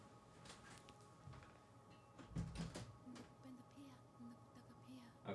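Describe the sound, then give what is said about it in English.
A closet door is handled, with a few soft clicks and then a louder cluster of clunks and thuds as it shuts. A steady low hum runs underneath, and a faint voice follows. “We were just saying, when you close this door, you actually can't, like, people at home, even with the music, will be able to listen.”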